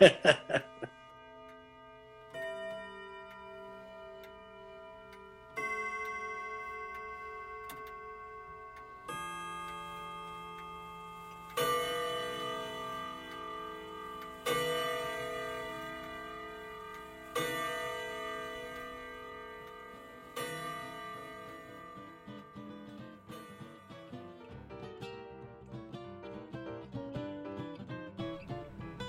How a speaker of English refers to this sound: Can you make that clock chime like 12 times right now?